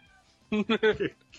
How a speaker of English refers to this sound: Oh, my cats are fighting. Come on, you guys, for Christ's sake. Really? Now? Really? I just threw a quarter at him. Stop.